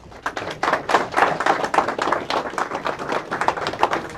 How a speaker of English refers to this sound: And can y'all please give a round of applause?